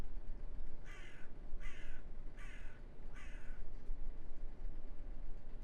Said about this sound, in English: I hear crows. There you are. Birds. You may need to turn it up a little bit more. But you can hear it now. And aside from the birds, you don't hear much else.